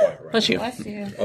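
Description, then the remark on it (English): A single sharp sneeze bursts out, a brief explosive puff of breath followed by a quieter vocal trailing off, with faint voiced sounds around it. “Bless you again.”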